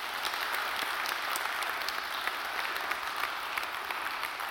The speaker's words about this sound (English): Our help comes from the Lord, the maker of heaven and earth. No mountain is too high for him. Amen. Bless the Lord. Give the Lord a clap offering tonight.